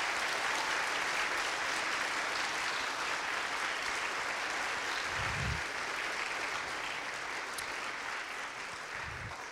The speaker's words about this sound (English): We celebrate you this Black History Month. Let's give them another round of applause.